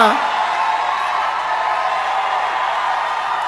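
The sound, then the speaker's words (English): A group of church members in Kenya shouting together, a steady wash of overlapping voices that holds constant throughout without any clear pauses or individual words. “Those are my church members who are shouting over there.”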